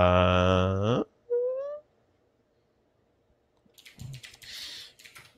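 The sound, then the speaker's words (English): Brisk, uneven clicking of a clicky computer keyboard being typed on to enter the website address MoneroVillage.com, arriving after two short tonal squeals and a quiet pause. “you can probably hear my clicky keyboard.”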